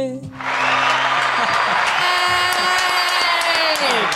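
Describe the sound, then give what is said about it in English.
A dense wash of applause with a few cheers rises within the first half-second and stays loud and steady over a lingering sung note, then drops away abruptly at the very end. “Better than I did that fade out on the applause.”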